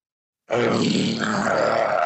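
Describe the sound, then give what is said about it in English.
After a brief silence, a man lets out a single loud, sustained roar, imitating a lion with his voice. The growl is rough and holds steady for nearly two seconds. “are you ready to roar?”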